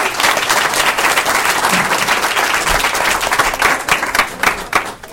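A crowd applauds steadily for several seconds, dense overlapping claps forming a loud, continuous wash that thins slightly toward the end.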